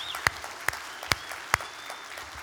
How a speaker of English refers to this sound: So if you would, will you give them all a big round of applause for being with us?